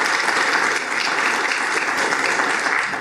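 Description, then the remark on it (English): Loud, steady applause from a crowd honoring their pastor and his wife, a dense wash of many hands clapping at once with no pauses and no voices standing out. “And maybe what you need to do is just, you know, in honor to your pastor and his wife, just give them a round of applause and let them know you really appreciate that.”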